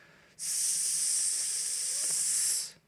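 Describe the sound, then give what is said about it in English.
Water sizzles on red-hot metal in one loud, steady, bright hiss that bursts in abruptly, holds for about two seconds, then fades out. “His waterfall forehead sizzles upon my effulgent framework.”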